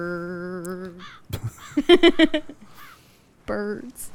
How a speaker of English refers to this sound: Birds. Sand. More sand. The trailer is already too long. More sand. It takes place in a desert. California.